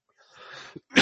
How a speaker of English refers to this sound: Excuse me. I'm still getting over a cough.